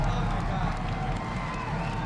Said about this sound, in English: That crowd is going nuts. Rightfully so.